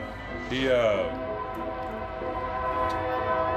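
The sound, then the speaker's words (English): A train's horn blares long and steady, its harmonic tones ringing across the whole stretch as the train rumbles by, with a voice talking over it. “Oh my god, train.”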